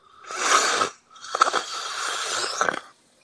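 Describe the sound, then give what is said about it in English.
A close, breathy yawn right against a microphone: a short airy intake, a brief pause, then a longer, strained exhale with a raspy, wheezy edge. No one speaks. “When you yawn, you're putting your mic in your mouth.”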